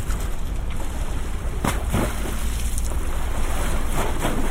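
Water from the River Thames in London laps against stone steps in a few irregular splashes over a steady, windy rushing wash, with no voices.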